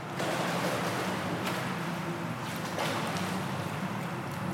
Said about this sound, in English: But I met up with her at the gym that I go to, and here's proof that I got in the water. And here's a little bit of me mid-swim lesson.